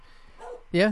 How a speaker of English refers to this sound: And the dog you hear barking in the distance, causing a lot of stir at 8 in the morning and waking up the neighbors, is Mahler, the psychedelic dog.